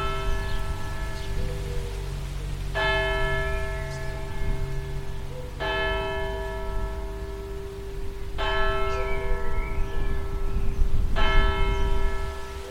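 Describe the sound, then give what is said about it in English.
The church bells of St Mary's, in a town in Sussex, England, ring out in slow, evenly spaced strikes, each leaving a long shimmering hum that carries over a steady low background patter like rain. “The best view in town from the top of St Mary's, the heart and soul for centuries, and the bells that you can hear for miles and miles and miles.”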